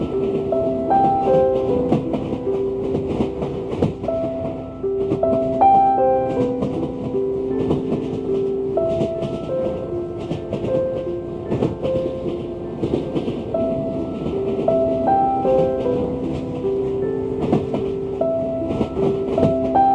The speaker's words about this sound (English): Now, when you're ready, all aboard the train to Dreamland.